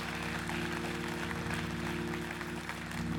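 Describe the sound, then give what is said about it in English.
An audience claps in a steady, dense wash of applause that holds at an even loudness for the whole stretch, with a low constant hum beneath it and no one speaking. “Can I make you clap for that?”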